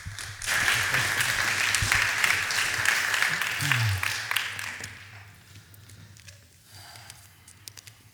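A crowd claps steadily for several seconds, a dense patter of many hands at a fairly loud level, welcoming a speaker up during a morning service, then the applause thins and fades out toward the end with a few scattered claps.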